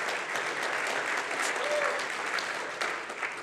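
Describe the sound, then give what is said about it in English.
A church audience applauds a sermon steadily, with dense, crackling clapping holding at an even level for a few seconds before easing slightly at the end. No one speaks over it. “Let's clap for Luke if you...”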